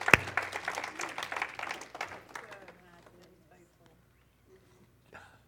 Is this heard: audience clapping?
yes